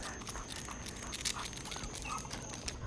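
The dog Jojo whimpers softly in the background, wanting to go interact with another animal outside: a few brief high-pitched whines rising and falling over a steady low hum, with no one speaking.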